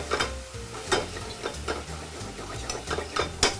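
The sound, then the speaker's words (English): About half a cup of tomatoes cook down in olive oil in a pan, giving a steady sizzle with bursts of crackling and occasional stirring scrapes; no one speaks. “And we're just gonna let these cook down in this delicious olive oil we have here.”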